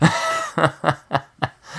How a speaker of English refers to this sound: Oh, sorry. I had a cough there. little cough, sir. It's, you know, the allergies.